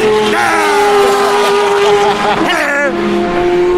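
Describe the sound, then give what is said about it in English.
A voice imitates a yellow Corvette sports car streaking past: a loud, sustained engine-like drone that holds a steady pitch, then wavers and bends near the end, lasting almost four seconds. “This mad yellow thing streaks past you going...”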